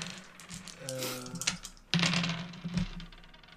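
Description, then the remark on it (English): Several dice clatter and tumble across a hard surface in quick bursts of sharp clicks, rolled for the tilt in a game of the Fiasco roleplaying game, with a faint murmur of voices and a low hum beneath. “Let's roll for the tilt. All right. Roll your dice.”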